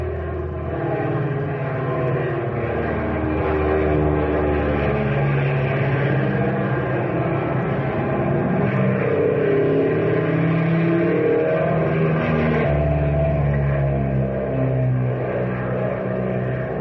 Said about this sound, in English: How do you like it? Oh, wonderful. What an engine, and she sure handles like a breeze.